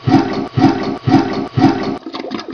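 A loud toilet flush, its rushing water chopped into four quick identical bursts in a stuttering rhythm, then trailing off into a softer gurgling swirl. No voices.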